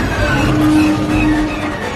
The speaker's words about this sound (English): The plane takes a couple tries to get started, and the sound of the first engine failure for Jock is the same sound we heard last year as the hyperdrive malfunction from Empire.